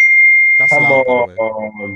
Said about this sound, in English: Sorry, bro, my phone.